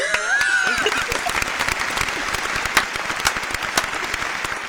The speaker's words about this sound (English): Round of applause for this bitch.